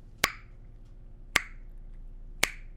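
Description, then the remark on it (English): Three sharp knocks on a door, evenly spaced about a second apart, each a crisp, bright rap that fades quickly, with no voices. “The lady walked up to the door, and she knocked.”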